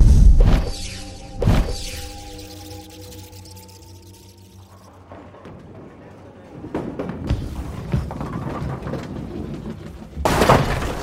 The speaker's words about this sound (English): strike. Another one. Did you shatter those pins?